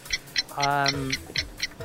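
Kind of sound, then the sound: sound effect, quiz countdown clock ticking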